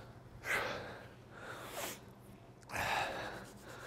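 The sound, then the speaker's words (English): Three heavy, rushing breaths from someone during a workout circuit, heart rate up, each a loud airy burst spaced about a second apart, panting to catch their breath. No talking. “Again, I already have my heart rate up. I'm breathing a little heavier.”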